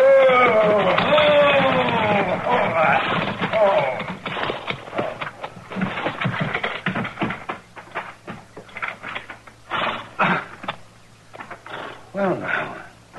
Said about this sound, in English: There's a wagon pulling into the yard.